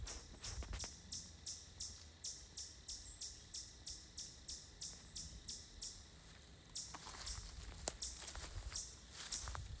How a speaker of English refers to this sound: That's it. That's what I thought was a bird, but now I think it's a chipmunk.